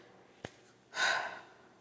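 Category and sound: human body sound, heavy breathing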